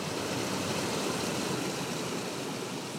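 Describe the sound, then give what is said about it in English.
A steady, continuous rush of water pouring over a long green monument wall into a recessed lawn space fills the scene evenly with dense hiss and no voices or breaks. “As you walk down the ramp into this recessed space, the sound of the traffic fades, and all you hear is the sound of the water pouring over the monument.”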